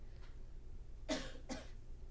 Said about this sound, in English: Sorry, I'm probably going to be coughing a little bit here and there because I have a weird tickle in my throat.